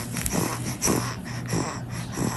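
A two-month-old baby with trouble breathing, taken to hospital in Columbus, Ohio, makes labored, wheezing breaths that repeat in a quick, uneven rhythm, each with a rough, congested snort, with no talking.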